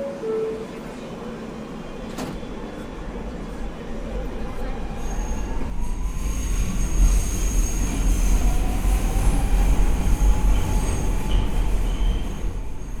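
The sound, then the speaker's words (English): A New York City subway A train rumbles along with a steady low roar that builds in loudness, thin metallic wheel squeals whining above the clatter, and no voices. “We're visiting a Golden Girls cafe way uptown on the A train.”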